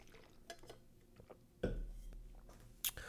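Clinks of a glass, then a short burst of water sloshing and trickling, with quieter handling and sipping noises following before a final sharp clink.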